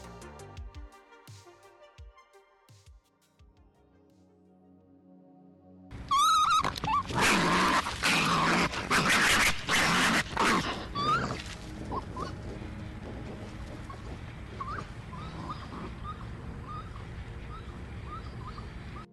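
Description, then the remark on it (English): A raccoon shrieks in loud, harsh, high-pitched bursts after a few quiet seconds, its cries tapering into softer chittering and whimpering yelps toward the end. “That's the bone-chilling shriek of America's favorite pest, the trash panda, or raccoon.”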